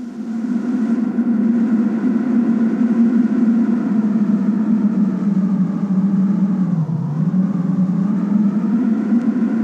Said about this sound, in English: Next is a wind crack. Wind through crack in door.